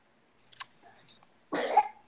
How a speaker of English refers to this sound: Who is that coughing?